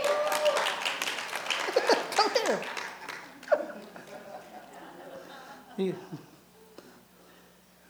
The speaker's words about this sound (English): It's just I loved it when you know everybody just applauded for you.